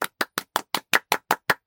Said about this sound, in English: Thank you, women. I know. I mean, let's have a moment of applause for women.